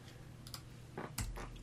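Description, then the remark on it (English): Crunching of someone chewing nugget ice: several crisp, brittle bites at an uneven pace, with a low steady hum underneath and no talking. “So I will always have nugget ice, and if you have to, you know, tough it out by hearing me chew on ice, I'm sorry, I'm going to chew on ice.”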